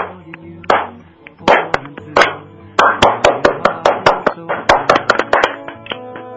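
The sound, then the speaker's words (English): Hand claps ring out, first a few scattered sharp claps, then a quicker run of uneven claps from a small group, loud and bright with no voices over them. “And if you're here there and you would like to have some peace in the world, let's just clap for peace.”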